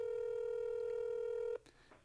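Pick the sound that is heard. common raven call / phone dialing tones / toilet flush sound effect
phone dialing tones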